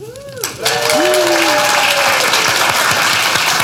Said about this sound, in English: It's amazing what you can do with special effects. That almost sounded real, didn't it? Yeah, we Tim pressed that applause button just at the right moment.